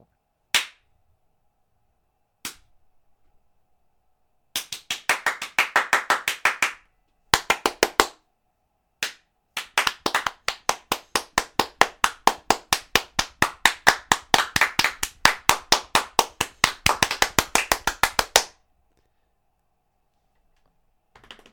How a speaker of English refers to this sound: You should clap.